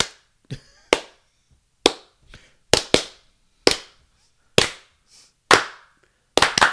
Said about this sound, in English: There's a distinct hand clap. Do you want to show us the hand clap